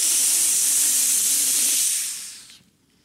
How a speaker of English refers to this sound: You covet, says James, and this word in Greek is literally the sound of hissing boiling water.